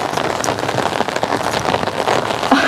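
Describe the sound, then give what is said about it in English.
Steady rain falling outside, pattering on a hard surface, a dense, continuous hiss of drops with no pauses and no voices. “I'm pretty sure you can hear this, but it is raining outside, and I do have an umbrella”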